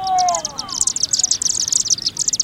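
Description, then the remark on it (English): Many high, rapid chittering calls from a flock of chimney swifts overlap continuously, a dense twittering chorus close by, with a brief lower whistled note at the start. “Scores, perhaps hundreds, of small, dark birds whirling by, then forming a funnel-shaped cloud above the chimney.”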